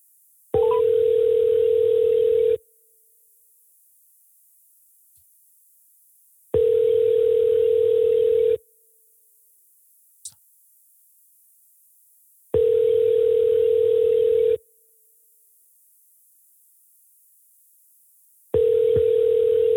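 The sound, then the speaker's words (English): A phone's ringback tone repeats on an outgoing call: four steady, mid-pitched electronic tones, each lasting about two seconds, separated by even gaps of silence, with no voices. “You call him and see if he answers.”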